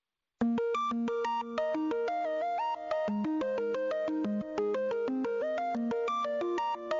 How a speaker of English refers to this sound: Somebody's phone is ringing. Oh, no, it's the song. Sounds like a ringtone. Somebody answer it. Answer the damn phone. Answer it.